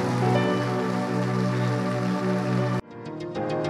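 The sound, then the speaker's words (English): An audience claps together in praise to the Lord in a loud, dense wash of hands, with a steady musical drone underneath. The sound cuts off abruptly near the end, then returns with a different, pulsing texture. “Somebody give the Lord a mighty clap of praise. Clap like it's yours.”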